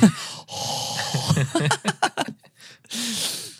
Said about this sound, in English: And I should stop breathing in the mic.